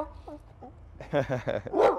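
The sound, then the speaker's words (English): A dog gives a couple of soft, high whimpers, then breaks into a run of loud barks and yelps fired off in quick succession. “Beautiful dog.”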